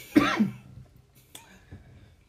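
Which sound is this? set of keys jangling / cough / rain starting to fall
cough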